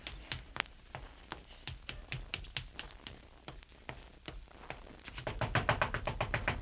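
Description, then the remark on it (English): Someone knocks on a bedroom door with a long run of sharp raps, irregular at first, then quickening into a dense, louder flurry near the end. No voices. “Who is it? It's me, Larry. Open the door or I'll kick it down.”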